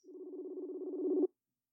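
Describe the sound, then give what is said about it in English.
A single telephone ring heard over a call line as a show phones a guest: a steady, mid-pitched buzzing tone with a slight warble, lasting just over a second before cutting off cleanly, with no voices. “It's ringing.”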